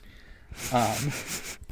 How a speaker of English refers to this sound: Why do you keep sniffing? It's so weird